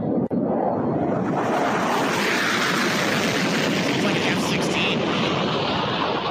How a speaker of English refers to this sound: But it's a prop plane with multiple standalone turbo or rocket turbines.